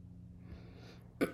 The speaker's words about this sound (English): Excuse me, I have a cough, so you may hear me clear my throat a few times. Forgive me, trying to get through this.